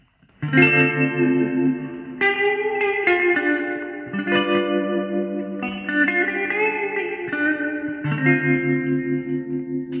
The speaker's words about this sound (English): Let's hear it with the other spring reverb.